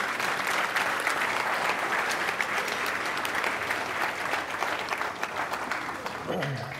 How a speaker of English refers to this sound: If you were here at that first meeting, would you stand where you are? Wow. Would you guys give these people a round of applause?